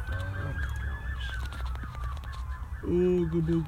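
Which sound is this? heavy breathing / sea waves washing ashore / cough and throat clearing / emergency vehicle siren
emergency vehicle siren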